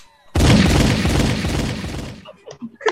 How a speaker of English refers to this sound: Oh, shit. Damn, shit. Gunshot